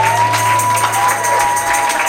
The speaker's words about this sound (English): Clap for me for doing the lyric.